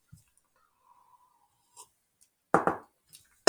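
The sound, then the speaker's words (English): A brief coughing fit after breathing in coffee: two harsh coughs in quick succession, then a sharp third one a moment later, against an otherwise quiet background with faint breaths. “I have my little coughing fit there.”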